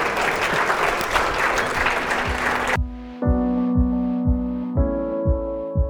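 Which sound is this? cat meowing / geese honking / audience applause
audience applause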